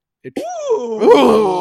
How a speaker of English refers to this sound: This really aggravates me, and this is part of the special edition part. The Obi-Wan yell with the sand people, like that's in the special edition now.